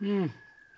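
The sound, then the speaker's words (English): A short burst of voice gives way to a faint, steady, high-pitched emergency siren wailing, its tone sliding slightly lower as it continues. “Next, with the sirens in the background, it's time to talk about global affairs.”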